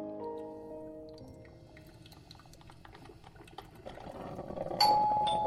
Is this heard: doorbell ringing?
yes